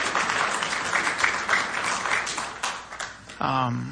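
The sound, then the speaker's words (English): A church audience applauds itself for the volunteer work of making Light Fest happen, with dense, steady clapping for about three seconds, then the clapping fades as a voice begins speaking over the last moments. “And so if you would, just give yourselves a round of applause for what you did.”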